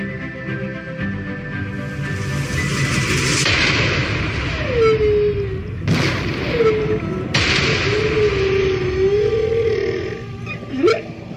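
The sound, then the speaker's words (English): Underwater seismic blasting: three heavy booming pulses roughly two to four seconds apart over a rumbling background, with drawn-out, wavering moan-like tones gliding between them. “Right now, fossil fuel giant Woodside is getting ready to seismic blast off the coast of Western Australia.”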